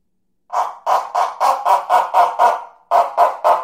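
A small lion's roar friction drum imitates a dog barking: a quick, steady run of about eleven short, raspy mid-pitched barks, with a brief gap before the last three, loud and alone.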